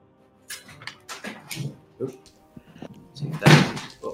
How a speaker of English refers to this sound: Knocking shit over. Nice.